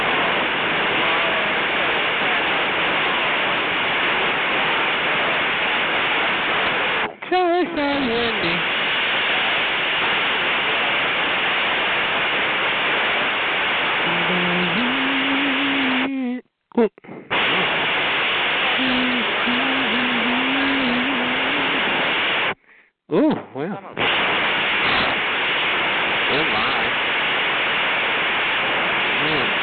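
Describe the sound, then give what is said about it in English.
Wind roars steadily through an open window as a loud, unbroken rush, cutting out abruptly a couple of times. Faint, indistinct voices can be heard beneath the gusting. “Close the window. It's windy in here.”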